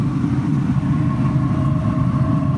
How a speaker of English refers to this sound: I can feel the grate of the grill here heating up a little bit, and I'm hearing a little roaring going on right now. Let me see if you can hear this roaring.